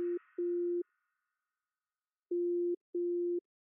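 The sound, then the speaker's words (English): A low, steady electronic telephone hold tone, heard while a caller is on hold, beeps on and off, two pulses, a pause, then two more, preceded by a brief crackly rustle at the very start. No one speaks. “That beep is going to get annoying very quickly.”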